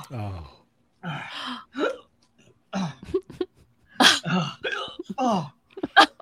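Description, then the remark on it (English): A person hiccups repeatedly, sharp voiced jolts coming at irregular intervals, mixed with breathy, strained vocal noises in between. “Oh no. Not the hiccups.”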